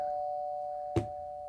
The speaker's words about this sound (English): All right. The doorbell's ringing,